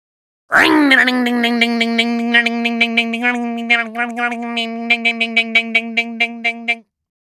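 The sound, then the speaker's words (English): A voice imitates a motorbike starting: a steady, buzzing engine drone held for several seconds, with rapid pulsing revs that quicken toward the end before cutting off. It is loud. “Motorbike starting.”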